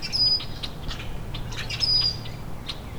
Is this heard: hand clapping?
no